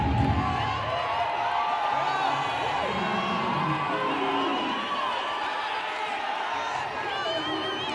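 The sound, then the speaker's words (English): A large crowd shouts and cheers continuously for several seconds, a dense wall of overlapping voices and whoops at steady, loud intensity, as a preacher calls on them to shout that the joy of the Lord is their strength. “Start shouting, the joy of the Lord is my strength.”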